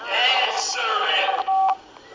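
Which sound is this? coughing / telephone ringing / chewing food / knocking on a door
telephone ringing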